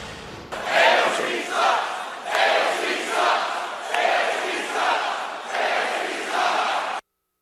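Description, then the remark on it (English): A large crowd at a campaign-style rally for Donald Trump, where Donald Trump Jr. appeared, loudly chants the initials of Alexandria Ocasio-Cortez in unison, repeating it in a steady rhythm about four times before it cuts off abruptly. “Air chanting her initials.”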